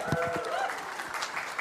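An audience breaks into a short burst of clapping for a young volunteer going first in a picture-guessing game, many hands at a steady, moderately loud level, with a faint murmur of voices mixed in.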